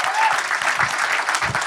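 A live show audience breaks into steady applause to congratulate someone on a new baby, a dense wash of many hands clapping at a fairly loud, even level for the whole short stretch, with no voices standing out.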